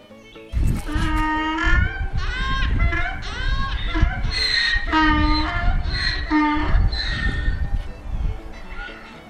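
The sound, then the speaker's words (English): A donkey brays loudly, a long run of rasping hee-haw calls that alternate between high wheezing pitches and lower honks, continuing for several seconds with no one talking. “Birds and wildflowers and cows and possibly a noisy donkey.”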